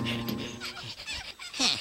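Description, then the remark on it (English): A cartoon dog whimpers and whines in short, uneven bursts, ending in a sharper, louder yelp near the close, without talk over it. “Bad dog!”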